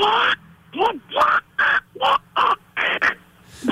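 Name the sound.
cartoon duck voice imitation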